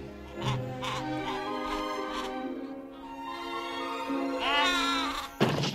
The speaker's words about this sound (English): When the sheep fell over? Yes! What the actual fuck?